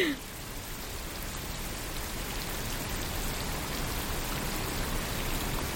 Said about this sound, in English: Is that rain? So, yeah, that's rain, which many people find very relaxing. But yeah. This isn't just any rain. It's rain that has been modified to make it white noise. Mm. That is nice. That is soothing, I will admit.